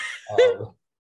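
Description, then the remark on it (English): A cat gives one short meow, a bright tonal call lasting well under a second, with no other sounds around it. “Yay, door cat. Yay, cat!”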